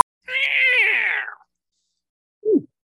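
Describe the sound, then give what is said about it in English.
A cat lets out a long, drawn-out meow that slides downward in pitch. After a brief pause comes a second, much shorter meow. The calls are clear and close, with no talking. “It's a star demon space cat.”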